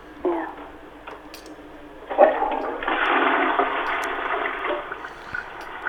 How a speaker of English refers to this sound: Could you leave it running for a couple of minutes and maybe also flush the loo for me and let me know if that looks normal?